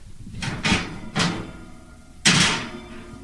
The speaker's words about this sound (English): currently approaching the oven, opening the oven.